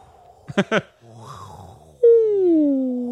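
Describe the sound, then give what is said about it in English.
Whale sounds: a quick burst of sharp pulses, a softer warbling groan, then a loud, sustained tonal moan that slowly slides downward in pitch, rich in overtones. “We're calming you down at the end of the year with whale noise.”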